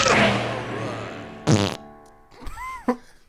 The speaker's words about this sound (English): That fart started to feed back. I don't know if you heard it. Excellent fart. A little feedback fart. Fart back.